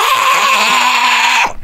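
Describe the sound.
A voice imitates a duck choking on a pencil: one loud, continuous strained squawk with a raspy, buzzy tone and a steady low drone, cutting off abruptly after about a second and a half.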